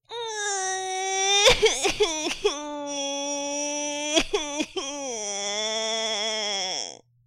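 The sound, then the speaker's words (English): A baby being tossed violently up and down howls and cries in two long, loud, high wails, each broken by a few sharp, choking sobs, the last wail sliding down in pitch before stopping. “While the Duchess sang the second verse of the song, she kept tossing the baby violently up and down, and the poor little thing howled so that Alice could hardly hear the words.”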